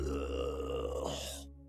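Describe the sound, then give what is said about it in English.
A single low, throaty growl made by a human voice imitating a crocodile, loud, rumbling for over a second before rising and cutting off abruptly. “It was meant to be trying to be like a throaty growl, like a crocodile, like but also just kind of sounds like I'm done with this crap.”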